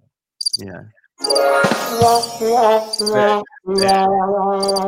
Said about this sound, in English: Those crickets are piercing.